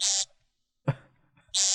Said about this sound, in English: It's a woodcock.